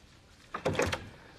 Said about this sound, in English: Get the door, will you?